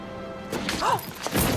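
A woman tumbling down bus steps onto the pavement: a rapid, irregular series of loud thuds and crashing knocks, with a brief rising-and-falling squeal midway through the fall.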